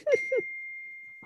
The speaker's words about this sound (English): Wait, sorry, that my for some reason my phone's going off, so sorry if you're hearing my text.